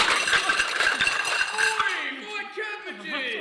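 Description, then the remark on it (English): A loud clattering crash as a man running through busy London streets in the early morning stumbles into a street seller's cart of metal and glass wares, with a rapid jumble of clinks and bangs, then a short, wavering vocal outburst as the clatter settles. “He stumbles into a street seller's cart.”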